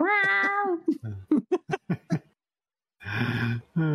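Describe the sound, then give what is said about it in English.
A cat meows, a long wavering cry followed by a rapid string of short chirping yelps, then a brief silence and a harsher, louder yowl. “Where's Ralph's cat when you need it?”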